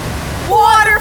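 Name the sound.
rushing waterfall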